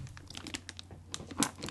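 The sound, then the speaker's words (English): Crackly crinkling and ripping of red, shiny gift wrapping paper, a quick series of sharp rustles and tears with one louder rip near the end; no one speaks. “It's a red, shiny paper. The paper is very shiny.”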